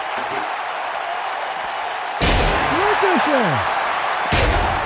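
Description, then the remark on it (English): A wrestler is slammed onto the ring mat with a suplex, a loud, booming slam over steady crowd noise, followed by shouting voices and a second heavy thud a couple of seconds later. “Slip slam. Down in the back suplex.”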